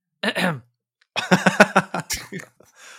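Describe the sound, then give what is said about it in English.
A voice makes a brief vocal sound, then a quick run of throaty, pulsing grunts, like someone clearing their throat a few times, ending with a short rasping breath. “Don't you clear your throat?”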